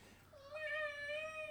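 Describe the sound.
A person imitates a cat with a single drawn-out meow, held for over a second at steady volume, clear with no other talking.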